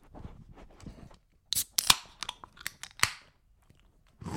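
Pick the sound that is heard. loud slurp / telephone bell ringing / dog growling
loud slurp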